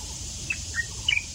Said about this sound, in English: You hear the insects? The birds? Natural silence. It has a calming effect, and it's increasingly hard to find.